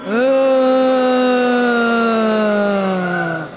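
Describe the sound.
A live audience lets out a long, loud zombie moan together as a warm-up before a show's opening, answering a host who calls out "hppodcraft.com"; a sustained low groan holds steady for about three seconds before sagging slightly in pitch and trailing off.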